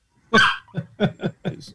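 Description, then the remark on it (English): A dog barks during a recording session: one loud, sharp bark followed by a quick run of four shorter barks in steady rhythm, with no one talking. “I don't know if you know this, but the dog sits in on recording.”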